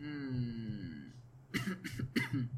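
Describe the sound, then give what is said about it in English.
Three sharp coughs in quick succession, fairly loud, from a person with a slight cough not caused by COVID, following a stretch of steady tonal background hum with no talking. “Got a slight cough.”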